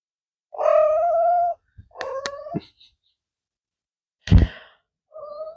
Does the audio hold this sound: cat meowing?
yes